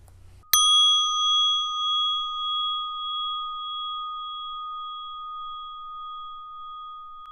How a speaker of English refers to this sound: And when you're ready, at the sound of the bell, releasing this practice and opening your eyes.